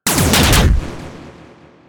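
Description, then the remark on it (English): A loud burst of weapons fire as two spaceships fire all their weapons at targets in perfect unison: a rapid cluster of overlapping blasts lasting under a second, followed by a long, fading rumble as the echo dies away. No one speaks. “Then, in perfect unison, all weapons fire.”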